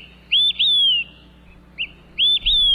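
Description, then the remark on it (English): An olive-sided flycatcher sings loud, clear whistled phrases: a short note rising into a long, sliding downslurred whistle, then a softer chip and the phrase starting again, with no voices. “Ordering up three cold ones, maybe in a patch of forest near you, today's Talkin' Birds featured feathered friend, the olive-sided flycatcher.”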